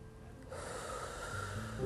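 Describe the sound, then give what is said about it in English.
A long, deep inhale drawn in through the nose, clearly audible, rising gently in strength over about a second and a half with no talking. “So take a moment. Breathe in.”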